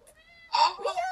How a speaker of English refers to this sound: Come here. I'll bring her in. Everybody likes my cat, so I keep this in. This is my cat. Aw, she's so cute. Yeah, thank you. Yeah, she wears a little silver bell, too, because she's bad.